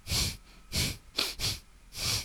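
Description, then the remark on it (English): A voice imitates loud animal sniffing and breathing heard at night in a tent while sleeping: five harsh, airy snuffles in an uneven rhythm, with no speech. “Like, it was very loud breathing, sniffing kind of noise.”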